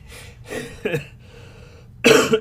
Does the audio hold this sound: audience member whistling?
no